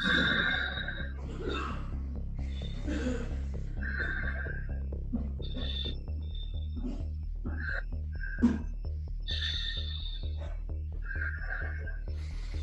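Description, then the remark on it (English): A series of deep, long, forceful breaths from the middle chest, each inhale and exhale rasping in a steady rhythm, the exhales dropping gently and slowly, over a constant low background hum, with no talking. “The fifth, we're going to do it very deep and long. And the breath, the exhale, going to drop gently and slowly.”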